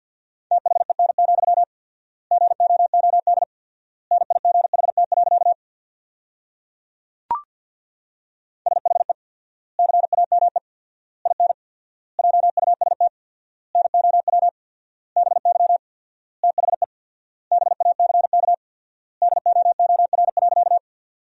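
Very fast Morse code at 50 wpm keying sentences made from the top 300 words with 4x word spacing, a single steady mid-pitched tone keyed in rapid bursts grouped into words with long pauses between them, plus one sharp click partway through. No one speaks.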